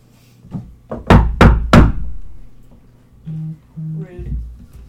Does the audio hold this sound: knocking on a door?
yes